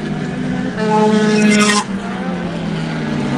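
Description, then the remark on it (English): Race car engines roar loudly on a banked track, revving hard with a sharp high-pitched surge as a car screams past on the back stretch, then the drone settles into a steady engine hum. “as they go down the back stretch, there goes Bailey again into Riverside, making a run on Devonport”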